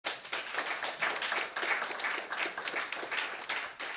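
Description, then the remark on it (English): An audience claps steadily for the full few seconds, a dense crackle of many hands at fairly even loudness with no voices on top. The audience has been asked to acknowledge a speaker with coins or clapping. “Either coins or clapping, I want you all to acknowledge”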